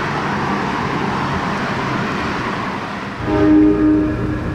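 A subway train rumbles loudly and steadily through the station, then a sustained high-pitched tonal whine, like braking metal or a horn, rises over the roar near the end. No one speaks.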